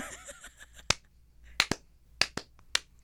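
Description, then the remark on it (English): Slow, scattered clapping from two people: about six sharp, crisp claps at uneven intervals, some landing in quick pairs, with quiet gaps between them and no talking. “Slow clap.”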